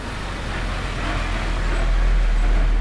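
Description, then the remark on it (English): A steady rumble of a bus travelling down Main Street, its engine and tyre noise growing slightly louder over a few seconds, with no voices. “If they had remained at the window, they would have seen the bus, as it travelled down Main Street, sink into the ground and disappear.”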